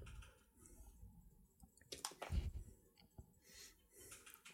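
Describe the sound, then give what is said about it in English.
A pair of dice is thrown, landing on double sixes, with a brief burst of hard clattering clicks midway through as they tumble and settle, moderately loud, with quiet background otherwise. “I ask the dice, does Brittany like wine? And I throw it.”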